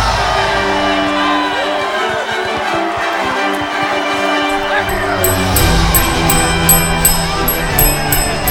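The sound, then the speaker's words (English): A loud, dense crowd roars and cheers continuously, with whoops and shouts rising out of the din and rhythmic clapping or stomping joining in partway through. “They're cheering for you. They're cheering for all of us.”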